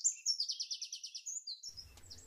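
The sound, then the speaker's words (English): Birds singing: a rapid, evenly repeated trill of bright high chirps, followed by a few scattered calls over a faint low rumble. No voices. “The birds sang joyful tunes as they asked the raven the details of what he saw out there.”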